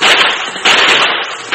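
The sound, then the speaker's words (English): Three loud gunshots fired by Carl from his moving horse as he flees the Lone Ranger ring out at uneven intervals, each a sharp, harsh crack trailing into a rough, noisy decay. No voices are heard. “Carl's aim was affected by his panic and by the movements of his horse, and his bullets went wild.”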